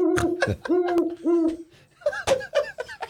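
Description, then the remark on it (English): A person imitates a snowy owl's hooting call with a string of short, nasal hoots in an uneven rhythm, fairly loud, then breaks into a few laughing, chortling notes. “The dreaded snow owl.”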